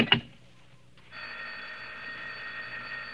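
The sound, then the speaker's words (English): A brief clunk, a short pause, then a telephone bell starts ringing in a steady, unbroken jangle that carries on at moderate volume to the end, with no one speaking. “Oh, what's the matter with his phone?”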